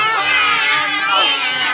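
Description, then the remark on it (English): A group of children wail together in loud, drawn-out yowls, imitating a cat's caterwauling in a sustained, overlapping chorus, during a telling of the Bremen Town musicians story. “Have you ever heard a cat caterwaul at night? What does it sound like?”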